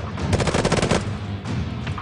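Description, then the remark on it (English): A rapid burst of automatic gunfire, sharp cracks fired in quick succession for under a second, followed by a few more scattered, slightly softer shots amid a steady rumble, as a female cop is shot in the leg. “She got shot in the leg.”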